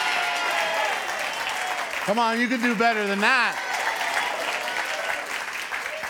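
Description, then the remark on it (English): A church audience at New Beginnings claps loudly for Jesus in a steady, dense wash of applause that fills the whole clip, while a man's voice calls out over it briefly in the middle. “Well, let's give Jesus a 10 times louder clap than that.”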